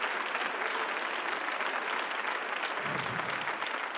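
An audience claps their hands to magnify the name that is above every name, in a steady, dense wash of applause that holds at an even loudness for several seconds, with no voices standing out.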